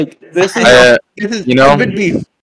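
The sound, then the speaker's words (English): A person imitates a foal's crying whinny with two loud, wavering, bleat-like vocal cries, each lasting about a second, separated by a short pause. “And then the baby horse just cries all flight”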